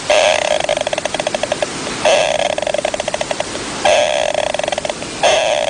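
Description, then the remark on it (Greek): A small animal snoring in its sleep, recorded on camera: a steady rhythm of high-pitched, rasping breaths, each a buzzy run of rapid pulses, repeating about every two seconds with no voices. “Ροχαλίζει τώρα.”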